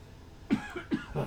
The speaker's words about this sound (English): a little cough there, and I hope it's the only cough I do for a while.